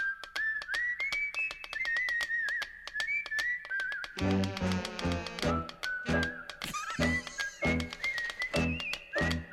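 A bright whistled jazz melody bounces along over crisp finger snaps, then a full band with bass and horns joins partway through, keeping a lively swing beat under the whistling.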